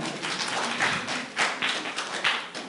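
A few people clap together in a brief, uneven burst of applause, the claps sharp and overlapping, swelling in a couple of soft waves before trailing off.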